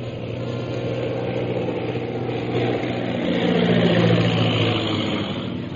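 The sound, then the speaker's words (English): A low-flying bomber's engine drones steadily, a thick low rumble with layered tones that swells louder toward the end before easing slightly. No voices are heard. “Most High Superior, here comes one plane right at us. I'm going to drop a bomb.”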